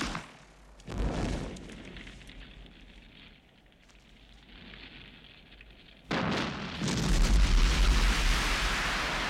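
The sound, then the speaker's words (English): An explosion booms once, settles into a low crackling rumble, then a second, larger blast erupts into a loud, sustained roar of fire and debris as a plane assembled from spare parts is blown up behind a sand dune for the film The Jewel of the Nile. No one speaks. “We had extra parts that we put together to blow up.”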